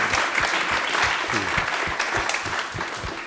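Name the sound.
audience round of applause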